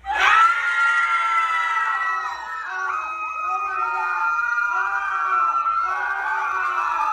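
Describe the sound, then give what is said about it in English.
Many airline passengers scream and wail at once as their aircraft plummets 10,000 feet in under two minutes, a dense, sustained chorus of high, panicked voices that stays loud for the whole stretch, with shrieks rising and falling over a low rumble. “Passengers are screaming as if they are about to die.”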